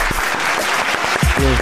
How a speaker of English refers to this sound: Hold on, you know what? For that, you deserve a big clap.